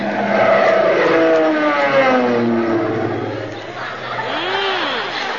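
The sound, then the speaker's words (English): A loud, droning airplane engine roars past as the plane flies low overhead, its harmonic tones sliding downward in pitch as it sweeps by, then a fainter whine rises and falls again near the end. “He was a little low, wasn't he?”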